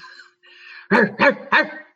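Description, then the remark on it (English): A dog, Simba, lets out three loud, sharp barks in quick succession, preceded by a softer, high whining sound. The barks are forceful, with no talking. “Uh-oh, he sees something. I got to bark at something.”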